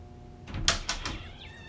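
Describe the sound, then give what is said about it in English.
A door opens with a quick series of rattling clunks from the latch and frame, ending in a short, thin squeak. It's moderately loud, with no one talking. “Thatcher did look back up, walk over to the door.”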